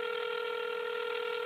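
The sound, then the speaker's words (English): A steady electronic touch-tone beep from a phone dialing a cell phone number holds unbroken for about a second and a half, clear, with no voices around it. “Sometimes I would just call his cell phone just to hear his voice.”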